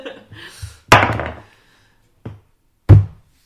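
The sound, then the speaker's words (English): Dice for a bushcraft roll in a tabletop roleplaying game clatter onto a table in a loud burst of rattling knocks, then two shorter taps follow after a pause, the last one sharp and solid. “So, I need a fresh bushcraft roll. I'm not touching these dirty dice.”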